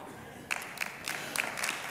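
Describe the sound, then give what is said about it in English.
Scattered clapping from a church audience during a sermon, a handful of sharp, bright claps at an uneven pace over a low murmur, fairly soft overall rather than a full round of applause. “That is something to clap about.”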